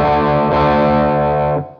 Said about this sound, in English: So that's that's the P90 and the humbucker out of phase, or that was the two humbuckers in series out of phase.